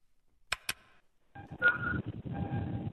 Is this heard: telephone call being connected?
yes